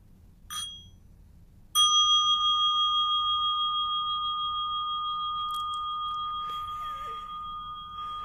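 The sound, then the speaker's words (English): A meditation bell is tapped lightly, then struck firmly once, releasing a clear, steady tone that rings on for several seconds, fading only slightly, with no talking. “I'll turn mine off and invite the bell and show you what it does.”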